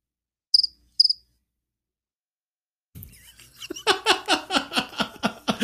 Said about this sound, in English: I was wondering what you're doing with your phone up by the speaker. I was like, I needed some cricket sounds.